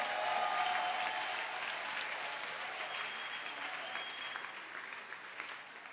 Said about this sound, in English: Oh, clap your hands for the Lord.